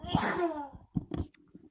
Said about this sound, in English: Wow. I'm glad you got to experience that. That was quite the sneeze. I bring the pain. But what's weird is I normally bring like 2, 3, 4, maybe 5 sneezes. For some reason, I got that all out in one.